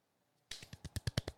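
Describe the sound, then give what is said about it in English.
Light golf clapping: a quick, steady run of about nine soft, crisp claps that grows a little louder as it goes, with no one talking. “You know why we're golf clapping right now?”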